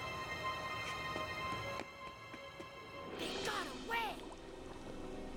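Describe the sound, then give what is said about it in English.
Two people jump into water, a burst of splashing rising over steady background music, with a rushing, bubbly swell lasting about a second before settling back under the music. “Oh, okay, they jumped in the water.”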